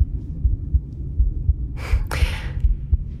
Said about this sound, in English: My heartbeat is a waltz. It's an arrangement of short and long notes that have a clearly triple time feel, which makes sense because time signatures in three always feel like a wheel to me when I'm singing in them.